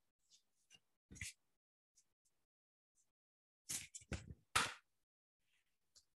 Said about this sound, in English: And I will shuffle my cards.